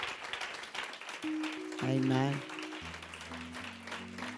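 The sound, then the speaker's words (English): An audience gives a hand clap of praise and adoration to God, a dense steady patter of many hands running the whole time, joined by sustained low keyboard chords and a brief spoken voice. “Hand clap of praise and adoration.”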